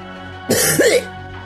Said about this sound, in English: Give me a cough. Cough one. Such a dark set of codes. I think Artemis says the woodpecker is searching. Cough once for completion. Cough twice for a problem.